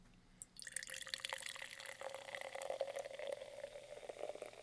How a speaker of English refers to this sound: Pour it in the microphone too.